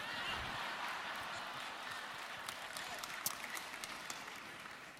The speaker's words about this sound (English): Not sure why that one gets applause.